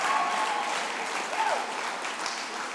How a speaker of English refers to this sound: Come on, clap for your pastors. They look so good.